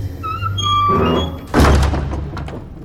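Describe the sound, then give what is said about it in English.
A door swings with a brief creaking whine, then thuds shut with a single heavy impact that rings out and fades. “It's not a 6 minutes rewind episode without doors.”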